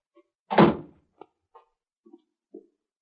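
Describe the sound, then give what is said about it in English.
A heavy cellar door of a house thuds shut with one deep, booming impact that fades out quickly, followed by a few faint, scattered knocks and creaks in an otherwise quiet setting. “That's the cellar door.”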